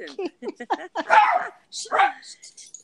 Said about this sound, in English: Sorry. Puppy dog.